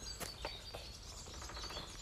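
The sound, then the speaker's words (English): A few sharp woodpecker taps ring out at uneven intervals in a quiet woodland, with faint bird chirps and a soft outdoor hum behind them. “We've literally just heard a woodpecker in nature.”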